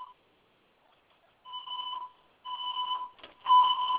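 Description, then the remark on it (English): A fire alarm in an apartment building blares in repeated electronic tone bursts, three loud pulses about a second apart with brief gaps, steady and piercing with no talking over it. “The fire alarm has been activated.”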